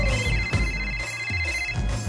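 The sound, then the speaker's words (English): A telephone rings steadily through the whole short stretch, its electronic tone held at a moderate level over a low background rumble, with no voices. “Let's call her. It's ringing.”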